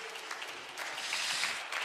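An audience claps steadily, a dense patter of many hands that swells noticeably louder partway through and carries on without any voices.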